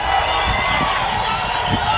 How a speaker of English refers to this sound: Mnangagwa supporters were at hand to defend his honor. They booed the First Lady.